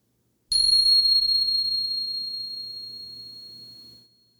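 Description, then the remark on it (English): A meditation bell is struck once and rings out clear and bright, its high sustained tone slowly fading over several seconds with no voices or other sounds around it. “And here comes the bell.”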